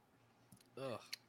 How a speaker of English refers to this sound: See, now I'm burping up Sprite and brown gravy. I don't like it.